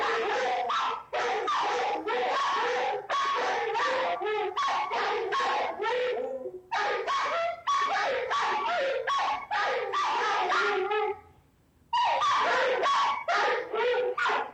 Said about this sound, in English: They could also just be really well-trained dogs.